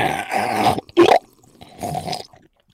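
sipping a soda drink

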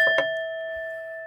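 bell ringing

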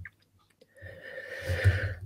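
small burp

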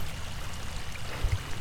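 creek water flowing

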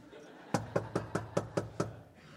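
knocking on a door

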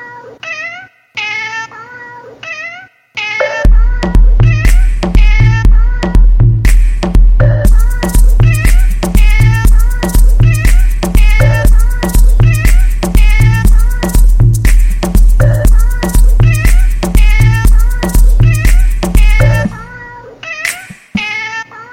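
cat meowing

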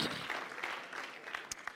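audience clapping

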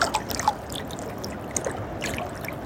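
trickling fresh water

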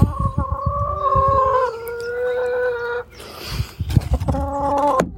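hens clucking

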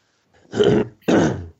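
throat clearing

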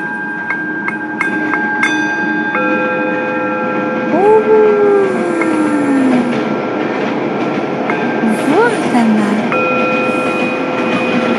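train moving on rails

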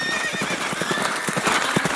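horses galloping

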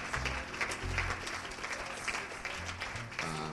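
audience applause

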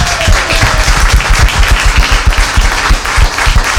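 audience cheering and applause

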